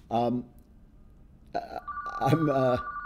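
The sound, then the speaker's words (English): A hotel room telephone rings with a steady electronic tone that starts partway through and continues to the end, while a man's voice makes short vocal sounds over it. “I've talked about this before, but I'm getting a phone call on my hotel phone.”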